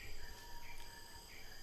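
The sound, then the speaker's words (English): Steady insect chirring fills a forest, with faint bird chirps rising briefly above a low, continuous background hum. No one speaks. “Yeah, there's so many bugs and birds in this forest, I can't even believe it all.”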